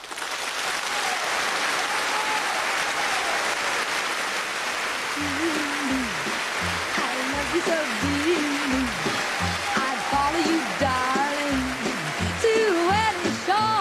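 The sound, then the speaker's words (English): A loud, steady round of audience applause welcoming a guest onto the show Scratch and Sniff, dense and continuous for the whole stretch; partway through, a voice rises over the clapping, talking or calling out as it goes on. “So, ladies and gentlemen, a huge round of applause, please, for”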